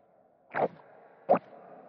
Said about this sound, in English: I taped a microphone to my throat to get those swallowing sounds.